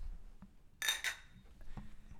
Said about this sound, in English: We are going to do what we call a three-way clink it and sink it. So we're going to clink it.